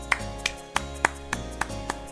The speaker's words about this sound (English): I'm clapping for that. I'll clap for Future Hunters. Have we clapped for movies before? No.